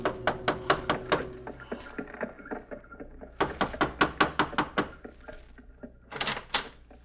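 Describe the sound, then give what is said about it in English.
Rapid, firm knocking on a door in a fashionable part of town: a quick run of about eight raps, a pause, then another brisk series, ending with a couple of final thuds. “Gave the driver his fare, received a wink in return, and knocked on a door.”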